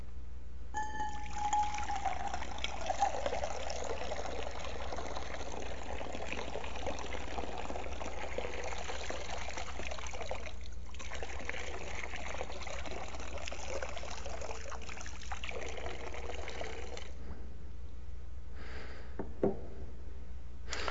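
Water pours steadily into a baptismal font for about seventeen seconds, a continuous splashing trickle, before tapering off into a few drips and quiet room tone. No one speaks.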